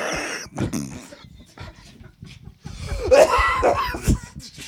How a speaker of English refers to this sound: you don't sound good. You sure you're up for this? Yeah, I'm just, when I'm horny, I cough a lot.